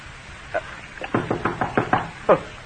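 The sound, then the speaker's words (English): Someone knocks on a door: one soft rap, then a quick, even run of about six firm knocks, ending with a louder final thump, with no voices. “Who can it be this time? Who's there?”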